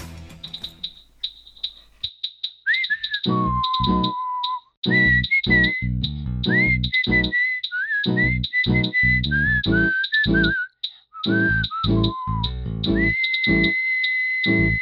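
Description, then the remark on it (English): A whistled jingle melody, bright and upbeat, rides over a punchy rhythmic backing of short instrumental hits, with a steady high tone pulsing above. Loud, with no talking. “it's time for Jingle All The Way. And at number 10, coming in at number 10, we've got A Whistling Odyssey”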